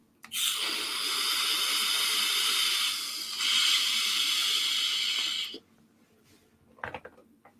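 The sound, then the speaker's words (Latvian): A steady electronic vape hiss during a draw, with the device turned down from 30 to 25, runs for about five seconds, briefly dipping partway through, then stops, followed by a few faint soft sounds near the end. “Pamēģināsim ar 25, ja?”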